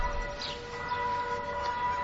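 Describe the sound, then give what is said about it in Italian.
Church bells ring during a teaching session, a steady, overlapping wash of sustained metallic tones, their hum holding at a constant moderate level across the whole stretch with no voices. “Non so perché quando insegno io suonano sempre le campane.”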